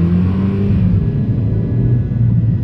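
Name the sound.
car accelerating away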